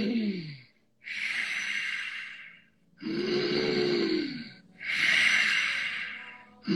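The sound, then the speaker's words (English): Slow, deep ujjayi breaths taken while sitting with a straight spine, alternating long inhales and exhales with a throaty, slightly snoring rasp; about four breath phases separated by brief pauses, with no talking. “We're just gonna start with a nice deep breath, much like the ujjayi, you know, feeling that snoring in the back of the throat.”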